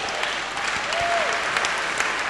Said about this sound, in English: Come, clap for him.